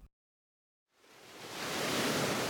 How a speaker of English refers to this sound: Jim's eyes shoot open at the sound of rushing water as he finds himself half standing, half floating, on a grassy plain facing the last known address of Susan Fontenot.